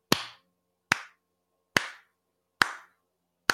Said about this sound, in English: And as you are all sort of like, dusting yourselves off and like congratulating each other, you hear from the distance a slow clap.